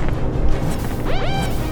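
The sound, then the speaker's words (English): Heavy blast doors aboard the Trudeau III slam shut with a loud, dense crash, followed by two quick whining mechanical sweeps that rise and fall in pitch over a steady rumbling roar. “PR, do you still hold enough sway with the Trudeau III to get a few blast doors closed behind us?”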